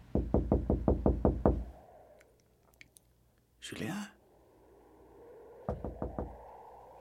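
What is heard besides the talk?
knocking on a door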